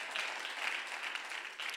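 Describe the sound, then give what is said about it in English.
A church audience gives the Lord a round of applause during a sermon, many hands clapping in a dense, continuous wash of sound at moderate loudness with no talking over it. “Somebody give the Lord a round of applause.”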